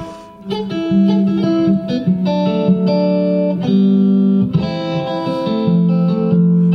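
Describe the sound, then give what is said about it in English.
An electric guitar plays a sustained, effects-laden riff, thick harmonic notes shifting pitch in steady steps over nearly seven seconds, loud and continuous with a wobbly, processed tone and no voices. “Oh my God, you guitar players drive me crazy.”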